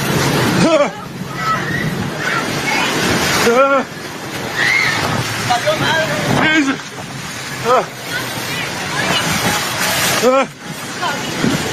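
Loud, continuous roar of a large wave crashing ashore and surf, with several high, rising-and-falling screams and shouts from a crowd of people running for their lives breaking through at intervals.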